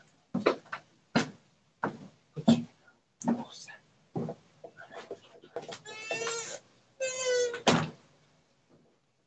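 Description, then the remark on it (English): An animal scratches and paws at a door in a string of sharp, uneven bumps and scrapes, then lets out a couple of loud, bleating cries. “She went scratch on the door.”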